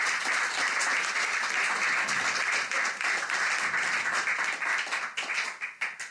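An audience at an evening album listening event applauds steadily with dense, bright clapping that holds for several seconds, then thins into scattered individual claps as it tapers off at the end. No one speaks.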